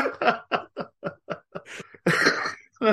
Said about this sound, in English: Oh, had to do a cough then.